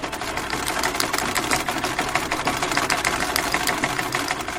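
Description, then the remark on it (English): A Singer sewing machine runs steadily in a small, narrow shop for several seconds, its rapid mechanical clatter forming an even, buzzing rhythm at a constant moderate loudness, with no one speaking. “That's a singer's machine, singer's soul machine.”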